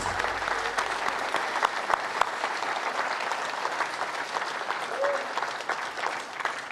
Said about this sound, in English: Do we have mothers in here? Can we stand up? We're going to honor you really quick. Let's give these mothers a round of applause for all they've done and put up with.